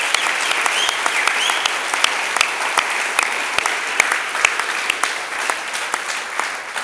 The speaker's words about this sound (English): So a big round of applause for Professor Stephen Finney.